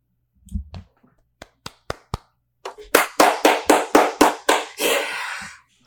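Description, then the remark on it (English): Hands clap a few times in slow, sharp, separate strikes, then break into a louder, quicker run of about eight claps that ends with a longer burst. No one speaks. “No claps from our director of player personnel.”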